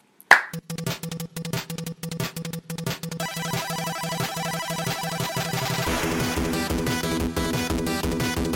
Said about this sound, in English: All right, we can start our claps.